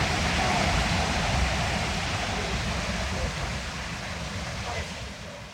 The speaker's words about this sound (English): The weir, as you can hear, is a thunderingly loud stretch of water.